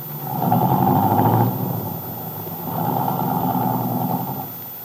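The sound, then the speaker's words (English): Bill's car engine rumbles and revs in two strong surges as the car drives away, then eases off as the sound tapers away at the end, with no voices. “Carla Descari waved happily after Bill's car.”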